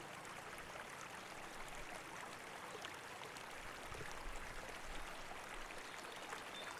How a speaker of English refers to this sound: So here we are, walking along the side of this stream.